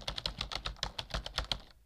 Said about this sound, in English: Okay, this is the last time I'm telling you. Stop typing so hard.